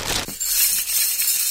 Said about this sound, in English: It's cutlery. This one's cutlery. How's that sound for you in your fucking speakers? Woo! Bit of cutlery. Bit of cutlery.